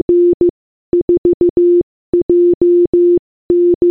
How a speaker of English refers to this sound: Can we look at the radio? The radio has a single button on it, which is like labelled on/off. Should we try turning it on? Trying to turn it on, you hear this. Morse code.